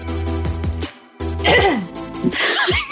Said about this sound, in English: That a cough or a sneeze? I was clearing my throat. Let me clear my throat.